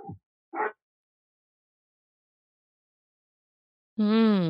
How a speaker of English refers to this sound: Well, thank you, and woof woof to your dog. I was going to say, your dog wanted to be on the pod.